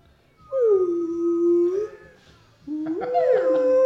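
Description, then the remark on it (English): A voice imitates a slide whistle with two loud, wavering tones: the first drops in pitch and holds low, then after a short pause a second one glides upward and stays high. “It's like a slide whistle, a really bad slide whistle.”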